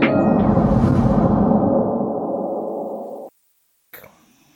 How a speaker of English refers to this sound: My dog is snoring right now. Here, I'll show him. Living his best life. There you go. Yep. He just came. He just came from doggy daycare. So, they wore him out.